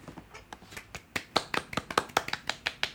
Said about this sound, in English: Well, it's very quiet applause, but it soothes my soul anyway.